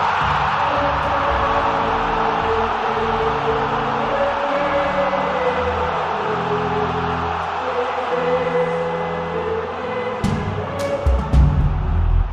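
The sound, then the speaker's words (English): A large crowd roars and cheers continuously, a dense wall of voices that stays loud throughout, with a few sharp bursts near the end. “So they squeak through our group stage and the crowd goes wild.”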